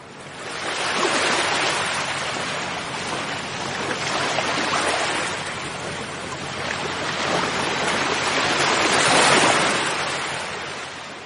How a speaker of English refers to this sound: Like the waves on the seashore.